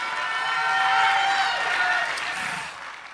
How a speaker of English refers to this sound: Woo! Why don't you just go ahead and clap your hands and shout like you really believe it?